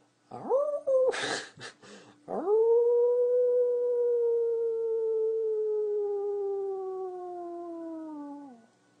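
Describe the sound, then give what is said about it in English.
A person imitates a wolf howl during a guided inhale-and-howl exercise: a brief rising yelp and a breathy noise, then one long, loud howl held for several seconds, sliding slowly downward before trailing off. “You know how to howl.”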